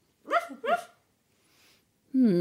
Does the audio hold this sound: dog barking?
yes